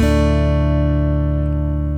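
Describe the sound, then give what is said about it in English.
Guitar strings struck once and left ringing, with the index finger on the fourth string at the second fret, a full, steady low chord that sustains loudly for the whole two seconds while its bright upper overtones gradually fade, with no talking. “You can hear how it's ringing out really nicely, and I'm just moving my index finger up and down the fretboard.”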